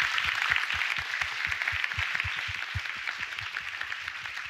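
A sustained round of applause from a crowd, dense overlapping claps forming a steady bright patter that holds throughout and eases slightly toward the end, with no voices.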